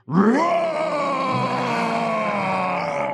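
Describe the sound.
A group of people roars together on a count of three, imitating lions: one loud, sustained, rough-voiced roar that swells quickly at the start and holds steady for about three seconds.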